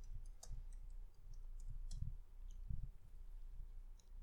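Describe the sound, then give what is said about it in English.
Soft, irregular clicking of keys being typed on a keyboard, fairly quiet, with a low muffled thumping underneath and no talking; the typing is done on top of Tara Jr., who is lying there. “I'm having a hard time typing because Tara Jr.”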